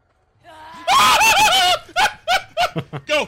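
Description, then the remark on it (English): A player lets out a loud, sustained scream, then a quick series of shorter shrieking bursts, while playing a scary game. It sounds intense, with no words spoken. “Here's just a taste of a few screams in a very short section of the game.”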